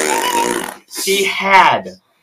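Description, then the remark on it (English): A voice makes a mouth imitation of farting: two loud, buzzy blasts, the first raspy and sputtering, the second a rising vocal squeal, lasting about two seconds together. “It's a farting problem.”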